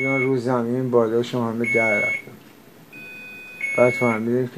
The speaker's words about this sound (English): We're always interrupted by the beeping, a constant reminder of where we are and what is happening.